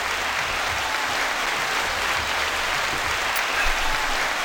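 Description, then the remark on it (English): A hand clap sound effect of steady applause for two gentlemen guests, a dense continuous patter of a group of hands clapping at even loudness for several seconds with no voices over it. “Well, I'm going to put some hand claps for both of you gentlemen.”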